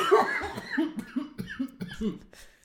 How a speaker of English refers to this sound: The cough. Yes. It's like, I always see it as like the third person in the show.